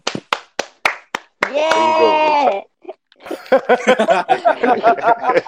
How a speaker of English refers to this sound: Wait, you clap for everyone? Bro, you ruined it, man. Wait, we clap for every guest, and you're the first one.